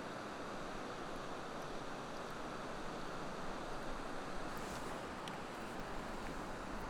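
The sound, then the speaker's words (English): Water running out of Loch Kurusk tumbles steadily over a rock slab, a continuous rushing roar with no pauses, broad and even throughout, with no voices present. “It sort of tumbles in over a rock slab and it's just absolutely beautiful.”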